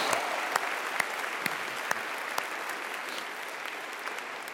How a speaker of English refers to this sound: And our guys' track team and our girls' track team both took the GMAC championship, so we can give them a round of applause for doing a great job there.